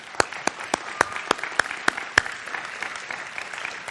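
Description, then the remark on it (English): A church audience applauding a guest during a morning service, a dense wash of many hands clapping with a few sharp, louder individual claps standing out early on, then continuing at a steady, moderate level with no talking. “Let's give her applause.”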